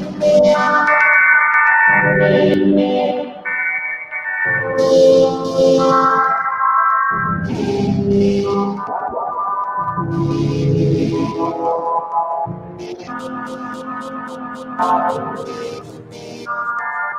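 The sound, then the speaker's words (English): Bright, harmonic synth phrases play in choppy blocks, then a beat repeat effect stutters them into rapid, evenly spaced repeats that sound much like a delay, loud and with no voices. “Oh, and so what I just did right there sounds kind of like a delay. But it's the beat repeat.”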